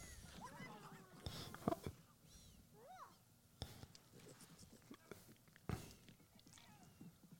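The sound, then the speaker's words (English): An animal eating noisily, with irregular wet chomps and smacking bursts, plus a few short squeaky, meow-like chirps in between. “Is getting all gross, gross eating noises, all that going on.”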